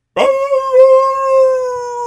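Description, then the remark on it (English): A dog named Willow lets out a long, sustained howl on a radio morning show, starting abruptly and holding a steady, slightly wavering pitch for about two seconds, loud with no talking over it. “That, I believe, is them trying to sing the song of their people. It's a doggy sing-along.”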